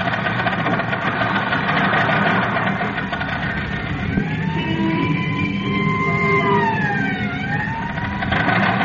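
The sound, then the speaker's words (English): An old car, a buggy with no springs left, races at speed on the Mount George Road, its engine a steady, dense rumbling drone that never lets up, while a wailing siren rises and falls over it partway through. No one speaks. “Can't you get any more speed out of this buggy?”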